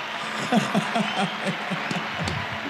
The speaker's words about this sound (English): Now you get live applause. Live applause.